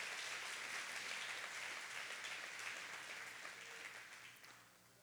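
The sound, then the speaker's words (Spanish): An audience breaks into sustained applause to the Lord, a dense wash of many hands clapping that holds steady before gradually tapering off toward the end, with no talking over it. “Si usted lo cree, dé un gran aplauso al Señor con todas sus fuerzas.”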